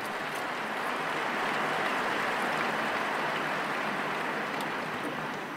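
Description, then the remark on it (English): A crowd applauds the Swiss CCC members in a dense, even wash of clapping that holds at a constant level for several seconds with no voices over it, easing slightly at the very end. “An applause.”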